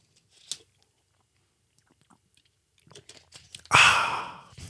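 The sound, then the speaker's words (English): Someone takes a sip of water: a faint click, quiet wet swallowing sounds, then a loud, breathy exhale near the end. “Let me just take a sip of water.”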